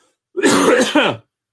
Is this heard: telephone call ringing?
no